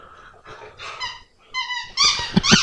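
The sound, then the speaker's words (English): A dog makes a run of whiny growling noises while playing with a toy, the bursts growing louder and more strained toward the end, with no talking. “No, he's got another sweet toy.”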